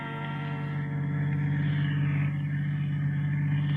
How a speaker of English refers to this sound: The opening scene is recent London, crowded London, a limousine in the traffic. In the limousine is the bride and the groom.